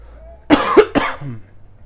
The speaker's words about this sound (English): Need to take a break from all the coughing.